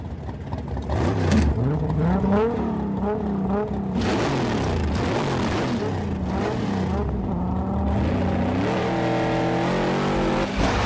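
Loud car engines rev hard and roar as Brian's and Dom's cars pull away from a stoplight on green in a street race, their pitch climbing and dropping through gear shifts in a continuous, aggressive burst with no break.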